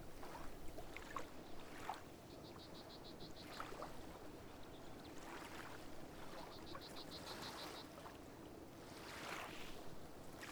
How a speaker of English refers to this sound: The water lapping on the shore sounds soothing and peaceful.